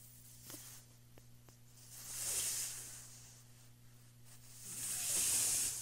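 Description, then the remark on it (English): A voice imitates water trickling from a sink faucet with two soft, drawn-out hissing "shhh" swells, each rising and fading over a second or two, over a low steady hum. “He went up to the sink where you wash your hands, and he started, like, trickling the water.”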